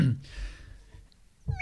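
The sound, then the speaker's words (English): A person voices a short, slightly rough meow imitating a cat, moderately loud, followed by a brief pause and the start of another vocal sound. “Meow. No, it doesn't sound clean.”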